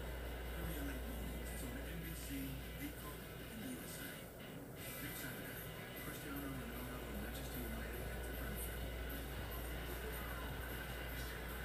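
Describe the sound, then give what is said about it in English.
A steady, dense roar of a whole field of race car engines being fired up at the start of a race, with wavering engine tones rising and falling throughout and no break in the loud, continuous mechanical noise. “Engines are fired.”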